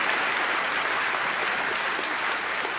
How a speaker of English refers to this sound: When we clap in church, it is not applause for a performance or a way of keeping rhythm. Clapping is saying, amen, I agree with what just was sung. So, if you're happy and you know it, clap your hands.